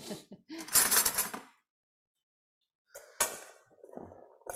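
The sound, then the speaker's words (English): A spoon scrapes and clatters through a cabbage salad with beans, onions and chickpeas in a bowl, with a dense burst of rustling and clinking, a pause of silence, then a few more sharp clinks and shuffles. “Let's give this a stir.”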